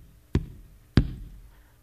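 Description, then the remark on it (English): Two heavy, booming knocks on the large wooden doors of a church, about half a second apart, each leaving a short low echo in an otherwise quiet space; a funeral procession leader knocks as a hearse brings a casket to the church door. “As this hearse is step by step bringing this casket closer to the door of this church, the funeral procession leader steps up to the big doors of this church and knocks 3 times.”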